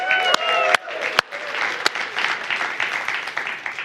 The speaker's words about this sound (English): Of course, if you're a part of Winnipeg South, Bronx Park, North End, and of course, my favorite people in Niverville, let's give them a big cheer.